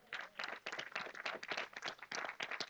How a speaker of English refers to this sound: And I believe, yeah, that's a great place to clap.